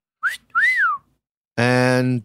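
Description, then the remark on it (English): A person whistles two short, swooping notes imitating a dolphin's signature whistle, the second longer and arching up then down, followed by a brief buzzy vocal sound, clear. “Dolphins have specific whistles that their friends refer to them by.”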